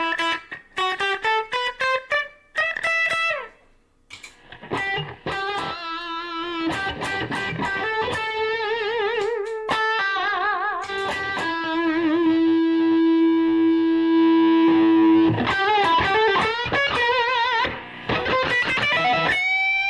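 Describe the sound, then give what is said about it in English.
A clean electric guitar played through a slapback delay pedal plays picked notes and sustained chords, each note followed by a quick slapback echo that gives a roomy, doubled feel; loud, with no talking. “So you can get a really slow delay, like a slapback. That's like a room.”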